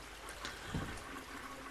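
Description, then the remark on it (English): A toilet flushing with water running as someone fiddles with it trying to fix it, a steady, fairly quiet rushing and gurgling that holds through the whole moment with a brief swell in the middle, no voices. “You should stop flushing it.”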